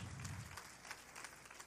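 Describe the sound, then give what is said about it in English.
An audience applauds in a steady, crackling wash of many hands clapping at once, holding a fairly even level throughout with no voices rising above it. “I know you just clapped, but can we clap one more time?”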